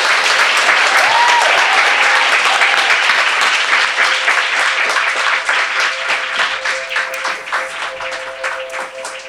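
A live audience breaks into sustained applause for Arianna, dense and loud at first, then thinning gradually into more scattered individual claps toward the end. A faint steady tone hums beneath it.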